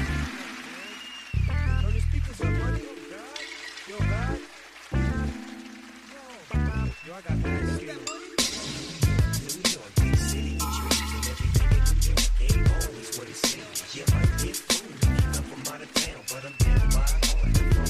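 A hip hop song plays loudly after a brief quiet start, with a booming bassline, punchy steady drums and a rapped vocal running continuously throughout.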